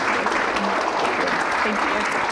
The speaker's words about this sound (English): So thank you so much for what you're doing. Big round of applause, everybody,